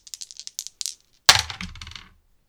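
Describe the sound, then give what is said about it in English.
Two dice are rolled for a tabletop game, landing a six and a three: a quick run of light clicks as they rattle, then a sharp clatter as they hit a hard surface and tumble to a stop. Fairly loud, with no talking. “I would say that's a brain roll with two dice.”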